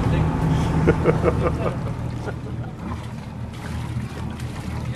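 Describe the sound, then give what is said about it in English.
A ferry's engine rumbles low and steady as the boat pulls into the small quay at Inchagoill, carrying passengers and two folding tables, with wind buffeting the microphone and some indistinct voices in the background. “The ferry is pulling into the small quay at Inchagoill.”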